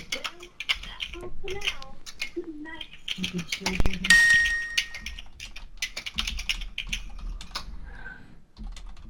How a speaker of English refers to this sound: Now what's she doing? What's she doing? Other than typing. Typing, yeah.